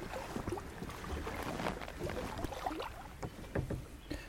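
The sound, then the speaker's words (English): A kayak glides through still, almost mirror-like swamp water, with soft paddle dips, gentle splashes and drips, and occasional light thumps against the hull, with a quiet outdoor background. “You can hear the water is almost mirror-like.”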